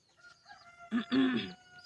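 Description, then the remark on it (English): A rooster lets out a single loud crow in the morning, a short clipped note followed by a longer drawn-out call, over a quiet background with faint clucking. “Get a little ASMR of chickens crowing in the morning.”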